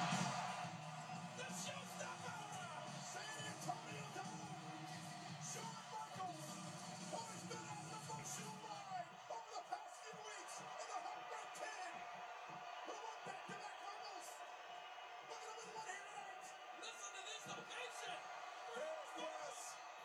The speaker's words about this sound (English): And because obviously Michael's been the hometown boy, as it were, just the fact of how like everyone's cheering for him and stuff.